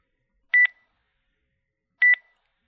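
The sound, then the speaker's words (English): Two short, high-pitched electronic beeps sound alone through the door of a suite, evenly spaced about a second and a half apart, each crisp and clear, with a faint ringing tail and silence in between. “As you walk back towards the suite that Wookiee exited, you hear through the door, beep, beep, beep, beep.”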